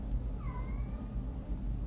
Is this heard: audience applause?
no